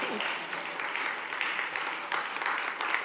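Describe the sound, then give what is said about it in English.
A church audience applauds steadily to honour two people being called up for an award, many hands clapping in a dense, even wash of sound that holds at a fairly constant loudness throughout, with no voices standing out. “Keep clapping, guys.”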